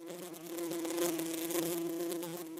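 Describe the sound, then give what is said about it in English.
A bee buzzes steadily, a continuous droning hum with a wavering pitch that holds for a few seconds without pause. “Bees are such amazing creatures, and it would be wonderful to be compared to a bee.”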